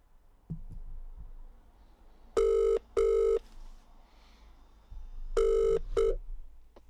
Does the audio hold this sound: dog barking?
no